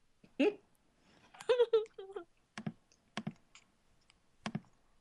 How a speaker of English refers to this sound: Somebody is typing like all hell.